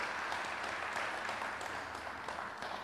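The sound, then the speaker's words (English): An audience at Firewheel claps in praise to Jesus, a dense, steady wash of many hands applauding at even loudness for a few seconds, with no voices standing out. “clap of praise.”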